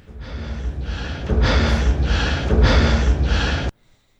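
Loud, deep heavy breathing, about six rapid rhythmic breaths in and out that grow stronger halfway through before cutting off abruptly.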